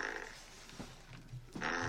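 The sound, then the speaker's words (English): Two fart sounds in a row: a short, low sputtering burst followed by a longer, louder raspy one, with no talking. “Double fart.”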